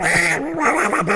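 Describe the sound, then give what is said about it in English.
A voice imitates a nose being blown, making a loud, nasal, duck-like honking quack that wobbles in pitch for about a second, with no talking around it. “It's supposed to say you blow your nose, not like give out a Donald Duck impression.”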